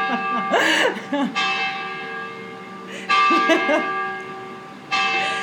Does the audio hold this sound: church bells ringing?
yes